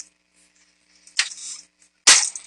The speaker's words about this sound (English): The hell you slamming my door for?